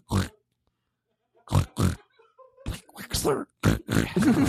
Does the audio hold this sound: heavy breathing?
no